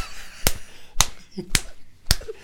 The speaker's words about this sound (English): What is the sound that Steve's face makes when Jonathan punches it?